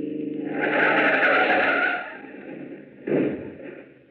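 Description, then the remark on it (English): A car skids with a long, loud tire screech over a rumbling engine, fading out before a brief second burst of noise, as a car is run off the road into a ditch on a long stretch of road. “Step on it now. Run her off the road. Now, run her off in that ditch.”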